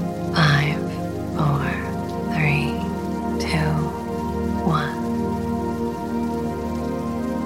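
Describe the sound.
Steady, even rainfall hisses throughout as a soft background bed, while a calm voice speaks five slow, evenly spaced words over it.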